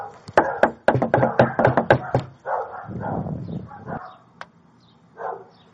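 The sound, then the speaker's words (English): A rapid series of loud, sharp knocks on a door by sheriff's office officers, about a dozen in quick succession, followed by muffled barking and a few faint thuds. “I'll give it the good old knowledge knock for some of the offense.”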